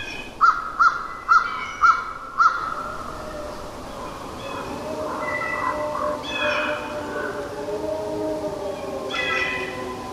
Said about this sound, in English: You'll hear a crow, and then